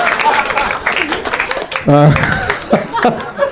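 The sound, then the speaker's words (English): A crowd claps and cheers in a dense round of applause for a player's answer in a movie-title chaining game, with scattered laughter and a brief whooping voice rising midway before the clapping carries on. “I don't know why they got a round of applause.”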